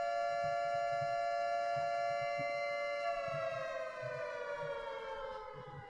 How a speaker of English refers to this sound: I don't have my computer plugged in, so ghetto sirens in the background.